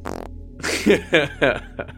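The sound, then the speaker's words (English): A fart, made while sitting on the floor, rasps out in a short burst, then stretches into several wet, bubbly sputtering pulses over about two seconds, moderately loud, with no one talking. “Yeah, I think … held it together just long enough to close the door stealthily before, like, sitting like a lump on the floor and audibly farts.”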